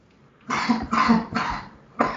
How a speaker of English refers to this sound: I have coughed several times and I keep muting it just before I do. I couldn't mute in time. I was like, oh shit.